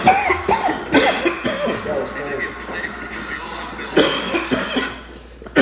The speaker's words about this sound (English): I know y'all hear everybody coughing. Can't nobody really talk right now.